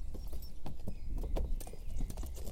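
animal, horse hooves clip-clopping

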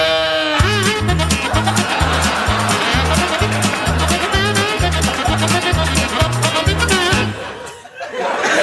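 animal, goat bleating

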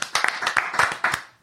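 crowd, audience applause

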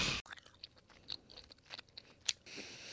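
food or drink, chewing gum

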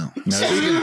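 human body sound, coughing and throat clearing

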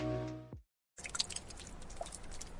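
nature, water dripping

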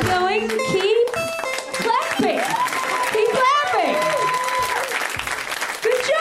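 crowd, audience applause and cheering

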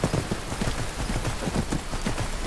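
animal, horse hooves clip-clopping

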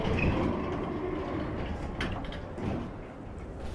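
vehicle, train leaving the station

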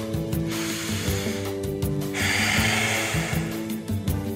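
human body sound, breathing

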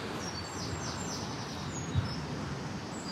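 bird, birdsong

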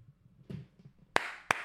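human body sound, two hand claps

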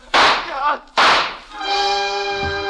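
sound effect, gunshots

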